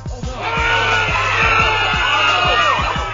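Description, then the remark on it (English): A loud, continuous tangle of many dying people's voices screaming and wailing at once in agony, overlapping, with a steady low rhythmic thudding pulsing underneath throughout. “The screams of the dead that you killed, dying in confused agony, as the hero they trusted murders them in a blind rage.”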